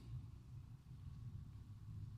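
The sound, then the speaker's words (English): A deep, steady low-pitched rumble carries on without pause, muffled and boomy, from kids' new Christmas sound system at the back of a church during a service. No one speaks. “It's those kids back there. They got a new sound system for Christmas.”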